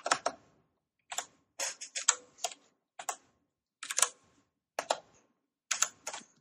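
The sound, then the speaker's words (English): A pen scratches across paper in short, irregular strokes, fairly quiet, with brief pauses between bursts of writing and no voices. “I just, instead of talking, we can just write it in one of the rooms and then they can't overhear us.”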